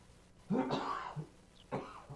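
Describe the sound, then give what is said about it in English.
A fairly loud cough bursts out with a rough, throaty rasp, then a second shorter cough follows a moment later, with no talking around them. “I just had to cough, so you got to fill in the coughing holes.”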